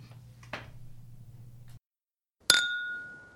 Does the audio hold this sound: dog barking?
no